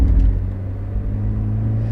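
A small sports car's exhaust gives a steady, throaty rasp over a low engine drone while driving, continuous with no one talking.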